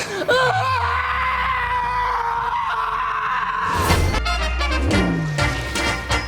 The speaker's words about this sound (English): I've broken every single bone in my hand. I'm going to scream now because I can't hold it in, so here we go.